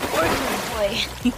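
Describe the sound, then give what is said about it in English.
Brief water splashing and sloshing as someone goes back into the water, with a broad noisy wash over about a second and faint voices underneath. “I'm going back in the water.”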